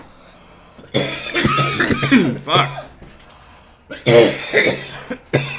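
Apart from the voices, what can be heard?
coughing fit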